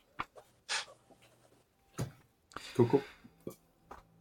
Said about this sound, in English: And she reaches in, pulls out a bit of paper, I start scrawling on it like mad, and hands it over to you so you can peruse that before next session.